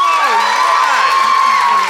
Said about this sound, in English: Now, if you think Josh, Nish and Ben are in the right, applaud now.